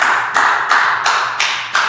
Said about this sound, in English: And I just want to give you a round of applause for that.